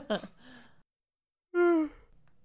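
A person yawns loudly, a drawn-out voiced groan that slides downward and ends abruptly, after a brief breathy vocal sound and a short pause.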